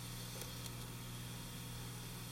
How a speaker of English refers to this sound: Cassettes with their hum.